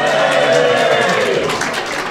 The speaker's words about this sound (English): You know, it had the horns that would go down, and round of applause for Horns of Nymon.